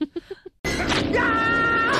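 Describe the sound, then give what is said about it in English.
A few short voiced murmurs, then a voice bursts into a loud, harsh, drawn-out yell imitating a character's scream of pain after being slashed in the leg, sustained for over a second. “then Mike screams like this. He goes, "Yah!"”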